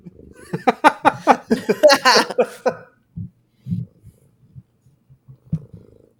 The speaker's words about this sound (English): Hey, somebody's purring. It's not me.